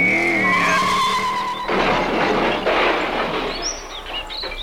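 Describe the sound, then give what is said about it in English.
A sound effect of a car's tires squealing loudly and high-pitched as it skids in a parking lot for over a second, then an abrupt crash as it hits another car, giving way to a long rumbling, clattering wash of noise fading slightly at the end. “And as the sound effects fade out, we're back at my point of view. He hit my car.”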